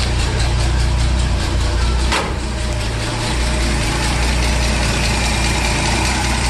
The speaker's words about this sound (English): The first one is the engine running.